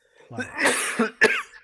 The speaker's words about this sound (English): Oh, you got a tickle? Got a little tickle? A lot of coughs. All that cigar smoke?